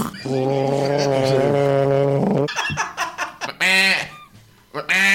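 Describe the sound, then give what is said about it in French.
A person imitates a duck: first a long, drawn-out nasal honk, then a quick run of short, loud quacks, ending in a couple of brighter, squawky calls. “Alors, j'imagine un canard dans un coin de la pièce, il fait coin, coin, coin, coin.”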